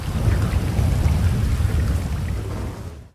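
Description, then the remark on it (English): Heavy rain pours in a steady, dense hiss while deep rolling thunder rumbles underneath, loud and continuous for a few seconds before cutting off abruptly. No voices are heard. “the fierce rain not dampening her mischievous grin.”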